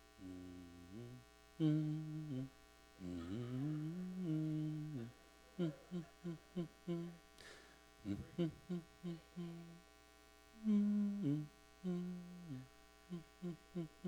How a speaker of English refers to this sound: That was my favorite Sunday school hymn. I was humming it.